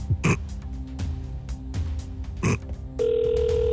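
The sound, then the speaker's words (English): A steady electronic telephone ringing tone, heard while waiting for the called person to answer, begins partway through and holds evenly to the end. Before it come a few short, sharp rustling or knocking noises. “Just waiting for this person to answer. It's okay. Builds the drama. People holding their phones now waiting. Yeah, wondering. Make sure your ringer's on.”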